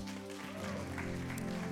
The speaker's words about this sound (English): See, the second, yeah, you guys can go ahead. The second demonstration, yeah, clap for them.